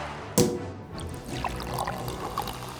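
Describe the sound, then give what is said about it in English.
A sharp clink, then a steady gurgling pour of liquid into a glass as a drink is topped up by a small amount, running for a couple of seconds with small bubbling splashes, moderately loud, with no one talking. “do you want to top up? Ooh, yeah, just a smidgen, just a little bit.”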